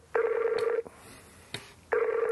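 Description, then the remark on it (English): A telephone ringback tone heard over a call line while phoning someone who is travelling: two steady, buzzy electronic rings separated by a pause, moderately loud with a faint hiss and a couple of small clicks in between. “Just the ringtone sounds crappy anyway.”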